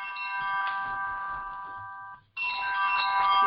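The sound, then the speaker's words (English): A mobile phone rings with a bright, steady electronic ringtone, playing one long phrase, pausing briefly, then starting again. It is fairly loud, with no talking over it. “I did not turn my phone off.”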